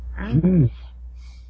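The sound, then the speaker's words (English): A single short, voiced sneeze bursts out, loud and abrupt, then fades into quiet with faint hiss afterward. “Bless you.”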